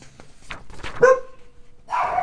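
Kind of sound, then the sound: animal, dog barking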